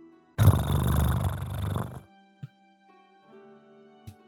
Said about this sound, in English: You look towards your left and you can see Felix just mid-meditation. And you also hear him purring.